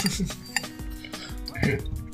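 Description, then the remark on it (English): Whiskey from a special bottle splashes into glasses, poured to be drunk straight, with sharp glassy clinks and knocks scattered through the short stretch and faint low voices in the background. “Pour us a glass.”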